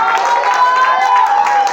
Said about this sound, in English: One more time, clap and make a joyful noise as you have your seat.